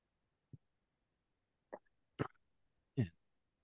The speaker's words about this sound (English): That was the first burp I've had for this.